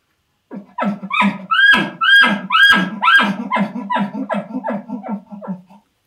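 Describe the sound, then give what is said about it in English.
A bull elk gives an aggravated chuckle call: a rapid series of about a dozen loud, grunting pulses with high whistling overtones, strongest early and gradually fading and slowing toward the end. “The other type of chuckles that you have are aggravated chuckles, which, you know, these have a lot more high pitch to them.”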